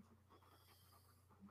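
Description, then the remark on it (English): A female dog scratches her head and pants rapidly and rhythmically, with soft scuffing mixed in, over a steady low electrical hum; no one speaks. “Dude, my dog's over there scratching her head going, She got excited for the trailer too.”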